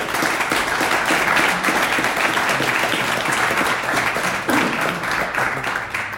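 Sustained applause from an audience, a dense, steady wash of many hands clapping at a fairly loud, even level for several seconds, with no voices standing out.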